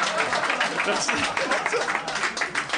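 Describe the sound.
A steady flurry of hand claps given as a "high clap", sharp and fairly loud, blending into a dense crackling patter for about three seconds, with voices mixed in underneath.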